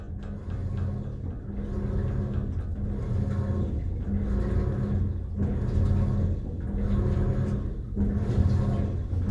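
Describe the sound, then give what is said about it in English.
A washing machine runs with a steady low rumble and hum, broken by rhythmic churning surges about every second and a half. No one speaks. “Those last two were my washing machine and then a pneumatic forging hammer I recorded in a factory in Kawasaki near Tokyo.”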